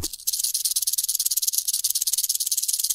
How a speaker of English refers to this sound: This box has two rattlesnake rattles in it. Let's see how they sound.